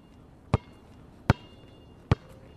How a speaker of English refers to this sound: the sound of a basketball bouncing is like his heart beating faster and faster as he makes his way to the court.